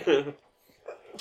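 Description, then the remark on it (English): A single short, sharp sneeze bursts out, voiced and breathy, followed by a brief quiet pause and a faint breathy sound as it ends. “Bless you.”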